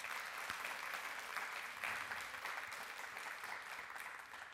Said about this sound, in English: Let's give her a nice applause.